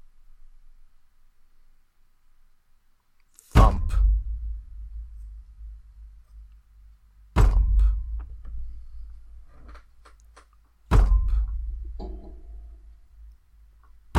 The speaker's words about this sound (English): There is a rumble. And then a burst of water that's almost like mud breaks through two of the doors into surgery and slams them to the ground and spreads them out.